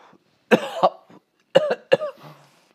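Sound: coughing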